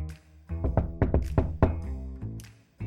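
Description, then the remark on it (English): A series of about six firm knocks on an office door by a hesitant assistant, in an uneven, hesitant rhythm, with soft background music playing underneath and no voices. “A very hesitant assistant approaches the office door with some news they wish they didn't have to share.”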